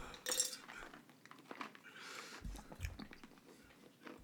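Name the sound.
chewing ice cubes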